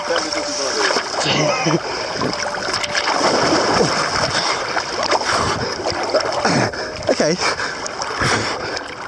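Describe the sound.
Water splashes and churns steadily as people who have lined up walk down steps and plunge in one by one, with sloshing bursts and a voice speaking briefly over the commotion.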